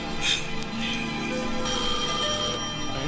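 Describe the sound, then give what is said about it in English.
A telephone rings steadily for a few seconds, its bright, trilling tone loud over a dense, murky background. “Answer that phone.”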